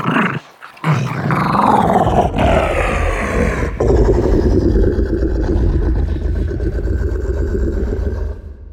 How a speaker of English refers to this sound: That's the monster that Luke Skywalker has to fight in the pit of Jabba the Hutt's palace. The Rancor's growls came from a feisty wiener dog pitched way down.